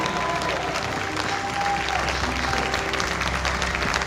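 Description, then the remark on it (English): An audience at a morning church service claps in praise to the Lord, a dense, steady wash of many hands applauding at once, sustained and fairly loud throughout with a faint murmur of voices underneath. “How would you give the Lord a hand clap of praise this morning?”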